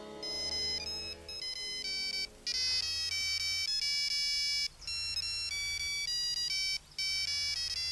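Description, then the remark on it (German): A mobile phone rings with a bright, tonal electronic melody, repeating in loud bursts with brief gaps, clear with no voices. “Oh, das wird Tim sein.”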